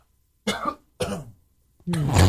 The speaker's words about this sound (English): That was not shade. She was actually coughing.